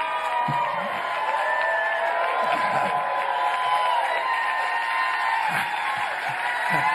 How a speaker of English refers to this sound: When you get to be 87, people stand and applaud at the start because they're not sure whether you're going to be around at the end.